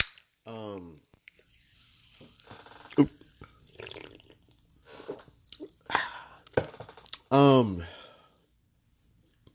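Kirkland lime sparkling water splashes and spills over a person in short, messy bursts, with a few sharp clatters and rustles, broken up by startled vocal exclamations at the start and near the end.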